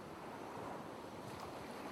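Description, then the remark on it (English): A steady, washing roar of ocean surf rolling against the shore, continuous and fairly soft, with a breezy hiss on top and no voices. “I couldn't even see the waves crashing down in front of me, the sand, the mist, nothing.”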